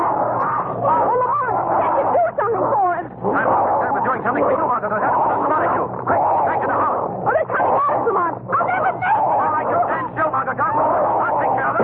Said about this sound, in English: Those two figures running after Whittington. It's the dog, the giant dog. They're chasing him